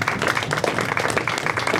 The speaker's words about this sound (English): Wow, that was impressive. First of all, a round of applause for that guess.